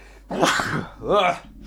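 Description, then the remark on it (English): A single loud sneeze: a sharp, breathy burst followed by a short voiced tail, heard on its own with no talking. “Oh, I'm about to sneeze.”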